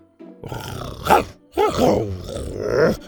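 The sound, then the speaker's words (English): A human voice imitates the growl of Buck, a creature crawling through a gap in tree roots: two rough, throaty snarls, the first rising to a sharp peak and breaking off, then a longer rumbling growl that swells and fades. “Buck tried crawling through a gap in the roots and turned and growled for Scoot to follow.”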